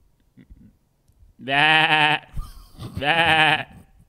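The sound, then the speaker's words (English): Two loud, wavering goat squeals ring out, the first drawn out and the second shorter, separated by a brief pause with no talking. “Hey, give us a goat squeal for LeBron.”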